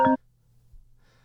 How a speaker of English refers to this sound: I got another call.